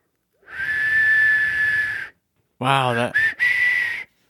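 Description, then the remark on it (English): A person whistles badly by blowing the air out: two breathy, airy notes, a long steady tone with heavy hiss, a short pause, then a wavering, sputtering note that falters before settling into a thin, shaky pitch. “Yeah, I can whistle blowing the air out, but it's terrible.”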